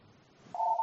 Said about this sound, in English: I forgot to unplug the phone. That's okay. It'll ring two more times.